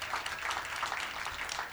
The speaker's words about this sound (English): Amen. Amen. Oh, if you are listening, clap your hands.